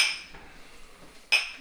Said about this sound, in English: Let's have a little cheers nice. And have cheers. A good podcast here, boys.